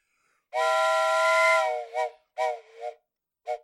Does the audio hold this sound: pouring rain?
no